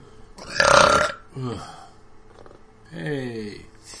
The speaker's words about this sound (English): Synchronized burps.